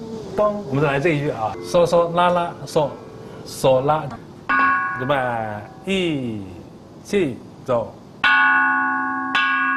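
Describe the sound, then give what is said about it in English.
Bronze chime bells are struck a few times beneath a speaking voice, each strike ringing with a steady metallic tone; a final loud strike near the end sustains clearly on its own. “chime bells are the main instrument.”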